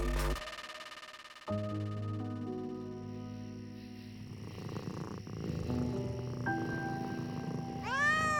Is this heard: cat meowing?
yes